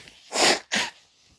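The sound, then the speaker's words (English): Someone blows their nose in two quick, forceful bursts, the first longer and louder, a harsh breathy rush with a brief break between, then quiet. “Sorry, I meant to pause before blowing my nose, but that didn't happen.”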